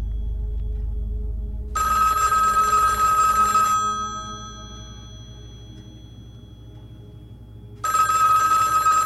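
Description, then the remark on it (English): A telephone rings twice, a bright, buzzy electronic trill lasting about two seconds, then a pause before the next ring starts. A low hum sits underneath, and no one speaks. “A heavy feeling fills me again as I grip the phone.”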